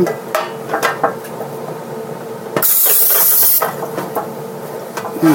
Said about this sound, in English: So I am using a cast iron pan, and what did I want? I'm going to just use some of this cooking spray. And I'm going to spray this iron skillet. Oh, my. This is greasy.